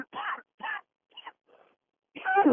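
A man coughs several times in the morning over a thin, band-limited phone line that keeps cutting in and out, in short harsh bursts separated by brief gaps, ending with a louder, heavier cough.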